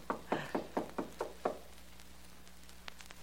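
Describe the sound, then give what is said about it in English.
Six firm knocks rap on the apartment door of Mr. Stone, a business manager, at 2 a.m., in a steady, even rhythm, followed by quiet and one faint click. “There's one way to find out. That's his apartment door.”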